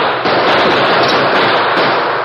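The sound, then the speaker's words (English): Rapid, dense gunfire crackles without a break, a loud barrage of overlapping shots with a harsh, gritty texture, as Monk Savage and his gang pour round after round into a darkened house where the Lone Ranger crouches by a shattered window. No voices are heard. “Monk Savage and his gang poured round after round of flaming lead into the darkened house where the Lone Ranger and Everett Barnes crouched on either side of a shattered window.”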